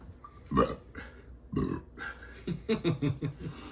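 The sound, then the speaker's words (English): A couple of low, rumbling burps come close together near the start, followed by a stretch of short voiced sounds that could be muffled talk or laughter. “Well, like the Sprite challenge where you have to drink a whole bottle of Sprite without burping.”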